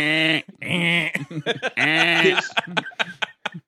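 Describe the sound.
A person imitates a goat with three drawn-out, quavering bleats, loud, followed by a run of short choppy vocal bursts like stifled laughter.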